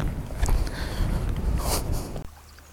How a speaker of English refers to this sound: Me and Pooch have just been sat here by the shore, listening to the waves.